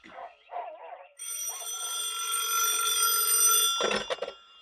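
A telephone bell rings in Petrie's pet shop in a sustained metallic burst lasting a few seconds, bright and loud, with brief speech-like sounds before it and a short noisy clatter as it stops.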